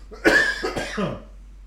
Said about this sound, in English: Guys, I'm sorry about the coughing. We're getting over it. We're getting over it.